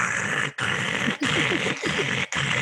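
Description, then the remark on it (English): A voice imitates a canoe that fell off a trailer being dragged along a road, heard on opening day at Bear River Refuge: a harsh, raspy, growl-like grinding repeated in about five loud, steady bursts, each broken by a brief pause. “We got out there early, get set up, and from miles away, we heard this scraping noise down the road.”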